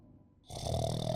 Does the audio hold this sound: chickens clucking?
no